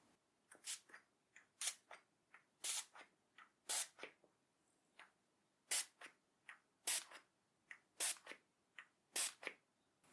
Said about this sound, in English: Close your eyes a moment for me, just while I spray this onto the rest of your face.